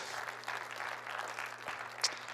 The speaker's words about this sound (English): So well done. Why don't you give yourselves a round of applause, actually, for coming out.